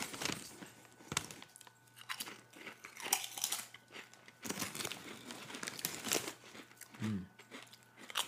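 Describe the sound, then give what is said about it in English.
Someone chews snack chips, with crisp, crackly crunches repeating in an irregular rhythm over several seconds. The crunches are moderately loud, with a faint low hum underneath and no talking. “I've eaten so many snacks over the years.”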